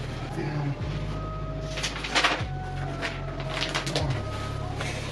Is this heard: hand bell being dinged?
no